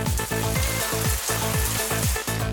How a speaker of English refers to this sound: You've used up your daily allocated shower water allowance of 5 Earth minutes, as per your status as a luxury budget class passenger.